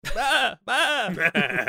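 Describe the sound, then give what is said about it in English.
A person's voice imitates a goat, letting out two drawn-out, wavering bleats followed by a shorter rising one, fairly loud with a brief gap between calls. “I'm just vibing as a goat.”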